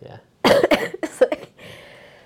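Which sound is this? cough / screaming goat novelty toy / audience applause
cough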